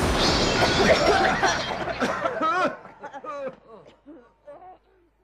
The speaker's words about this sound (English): It's coming this way. Get down. It's a skyrocket.